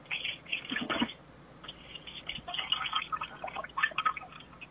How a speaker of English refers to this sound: Yeah, sounded something like that. I mean, that was definitely someone pooping. That was poop.